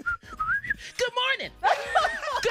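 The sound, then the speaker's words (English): A person whistles a short, wavering melody, the tune sliding up and down before breaking into voiced, laughing sounds and a brief bit of chuckling. “I don't like the whistling, then the good morning.”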